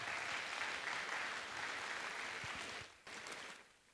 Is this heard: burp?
no